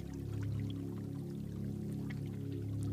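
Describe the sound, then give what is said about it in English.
Soft, gently lapping water, a quiet continuous wash with faint splashes, set against a low, steady humming drone with no one speaking. “Listen to the soothing sound of lapping water.”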